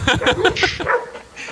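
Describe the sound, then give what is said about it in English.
A dog barks in a quick, excited burst of several sharp yaps, with some higher yips mixed in, trailing off into quieter sounds at the end. “We got 4 dogs, so always got to like make sure one's not chowing the other, make sure they're sleeping good, make sure they're pooing outside, all the handy-dandy.”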